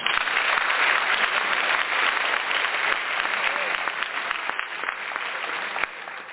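A crowd applauds for Old Timers Day and the New York Yankees, steadily for several seconds, a dense wash of many hands clapping at once that stays loud throughout and eases slightly toward the end.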